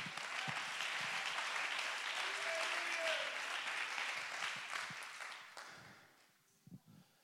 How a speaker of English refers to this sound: Somebody clap your hands and give him praise.